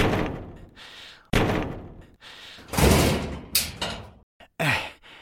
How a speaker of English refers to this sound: Roy lifts the sledgehammer above his head and brings it crashing down on the quantum mechanism.